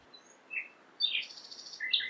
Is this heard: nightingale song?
yes